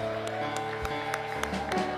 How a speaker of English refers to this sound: Clap our hands again this evening and praise Him. Hallelujah.